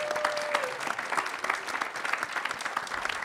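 A crowd claps steadily, a dense wash of many hands at a fairly even, moderate level for a few seconds, with no one speaking over it.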